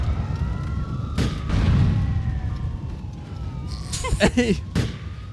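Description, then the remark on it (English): A video game grenade, thrown while being chased by police, goes off in a sharp burst followed by a low, rumbling boom, while police sirens wail steadily underneath and a voice briefly speaks near the end. “And one more grenade.”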